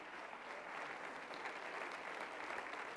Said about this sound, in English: And so on today, just be encouraged and give God a hand clap of praise for his word.